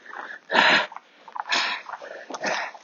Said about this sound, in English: Really tired, and that heavy breathing is all down to being... exhausted. Nothing else.